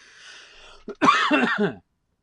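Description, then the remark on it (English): One loud cough with a short catch before it, then a raspy, voiced rasp lasting under a second, ending abruptly into silence. “Okay, I'm gonna cough.”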